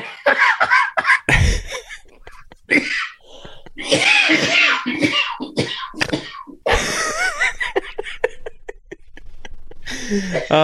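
Repeated harsh coughs break out in a burst, tangled with loud laughter and voices, close to the microphone and busy throughout.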